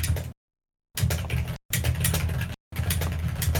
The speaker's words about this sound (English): As you do, I would like all of you to roll one dice right now.